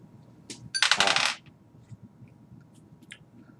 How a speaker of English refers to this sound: Let me just roll some dice here.